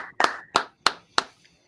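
Four sharp hand claps in a steady, evenly spaced rhythm, fairly loud, with a faint tonal hum underneath and no talking.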